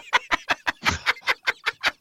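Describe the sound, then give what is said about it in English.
A person imitates chirping "like a frond monster", the sound jokingly said to have once meant tea, with a rapid, even string of about ten short, clucking chirps in a bright mid-high pitch, steady and fairly loud, with no other talk. “They chirped like a frond monster.”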